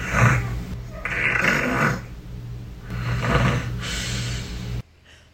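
A person snores loudly in repeated rasping, rumbling breaths, three or four heavy pulses with a low throaty drone beneath, then a sudden cut to near silence; the snore is isolated from a Snapchat recording with its levels brought down.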